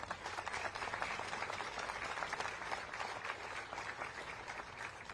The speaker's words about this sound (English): Please give our guests a round of applause.